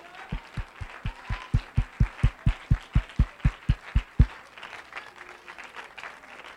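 A standing church audience in Oklahoma claps to the Lord in a steady, driving rhythm, with about sixteen strong, evenly spaced beats over a bed of scattered applause that fades after four seconds into a lingering murmur.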